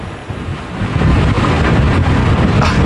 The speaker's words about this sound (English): Wow, that was a heck of a gust. No, you don't have to be sorry about that. We knew that was going to happen. That's why the rest of us are inside where you should be during a hurricane.